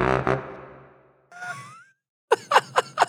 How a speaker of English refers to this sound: It sounds like a monster snoring. Oh, he's sleepy sleeping. He's a big boy sleeping.